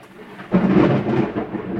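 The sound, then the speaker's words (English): A sudden, loud thunder clap from a lightning storm bursts in after a quiet moment, a deep booming roar that rumbles on with a rough, sustained tail through the end. “Was that lightning?”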